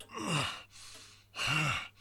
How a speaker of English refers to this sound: Meanwhile, at the Andrew Bronze estate, Crimson Garnet flies into the room with Andrew and Devrin, breathing very hard.